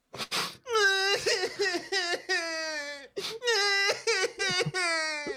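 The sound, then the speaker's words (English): Loud sobbing cries of a kid in two bursts, each a string of drawn-out, quavering high wails broken by sharp gasping breaths, with no words spoken. “But this kid is not a quiet sniffler. He's a loud sobber.”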